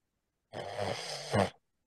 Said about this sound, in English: That was a snore. That was a snore. What? I'm keeping that in there, but just because, you know. Might be my breathing.